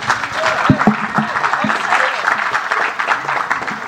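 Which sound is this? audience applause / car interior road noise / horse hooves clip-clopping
audience applause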